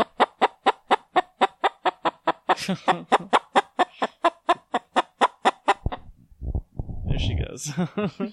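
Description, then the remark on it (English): A hen clucks in a studio as she is rubbed under both wings up towards her neck, a fast, steady run of short, even clucks for several seconds, then a few rougher, wavering squawks and trills. “that's our first legitimate chicken chat”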